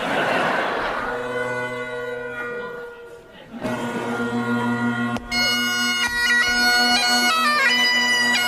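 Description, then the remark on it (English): A Scottish bagpiper plays bagpipes loudly and continuously at a ceremony, a steady droning bass holding beneath a bright, reedy melody that shifts between notes, with a brief dip partway through before the tune swells again. “Here's our NSF indicator. Scottish bagpiper”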